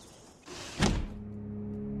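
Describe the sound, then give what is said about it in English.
A sliding glass door of a house rolls open with a brief rumbling slide that ends in a solid thunk, followed by a quiet, steady low hum. No one speaks. “Looking more than a little nervous, he decides to open the glass doors.”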